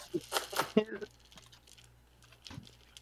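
A d20 die, rolled for a perception check, clatters across a hard surface in a quick burst of sharp clicks and rattles, settling within a second, followed by quiet with a faint low hum and a soft knock.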